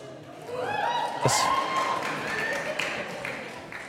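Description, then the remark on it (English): An audience in Portland claps steadily for Beth Moore while voices cheer and call out over the applause, with one dull thud partway through; the crowd noise stays fairly loud throughout. “Let the record show, people are clapping for Beth Moore in Portland.”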